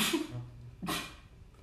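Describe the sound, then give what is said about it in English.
Two sharp sneezes, the first breathy and hissing, the second a sudden voiced burst that trails off into soft breath. No talking. “Bless you.”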